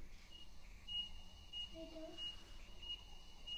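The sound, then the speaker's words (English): A faint, high-pitched reversing alarm from forklift trucks backing up in a large warehouse, a thin electronic tone that holds steady for a few seconds over a low background rumble. “got a big warehouse, so I got forklifts and trucks backing up.”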